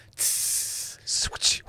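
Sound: steam hiss sound effect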